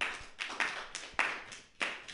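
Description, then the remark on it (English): A series of sharp hand claps repeats at a quick, slightly uneven pace, each one a crisp, bright smack with a short room tail, with no talking. “Yeah, get that clap going like you're at a sporting event, you know?”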